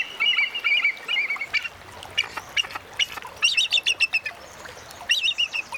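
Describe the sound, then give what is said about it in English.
A bald eagle calls in a string of high, thin chattering notes and squeaky piping whistles, coming in bursts with brief pauses between, fairly loud with no talking. “We leave you this week with a fisher who doesn't practice catch and release.”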